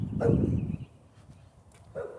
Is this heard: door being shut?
no